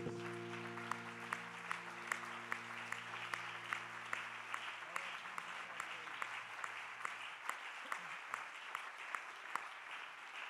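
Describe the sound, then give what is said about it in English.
A church audience claps their hands for the Lord after a prayer in dense, sustained applause, many hands at once filling the room steadily, with a held organ chord fading out underneath at the start. “Let's give the Lord a great big hand clap.”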